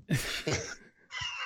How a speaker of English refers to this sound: I'm fighting up a sneeze.